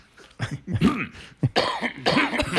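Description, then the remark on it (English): A run of several loud coughs, harsh and throaty, coming in quick uneven bursts with a raspy, voiced edge, as if someone is hacking to clear their throat. “Why would I cough by accident?”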